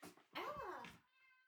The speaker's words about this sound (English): the cat wants to be let out and she's screaming at me. One second.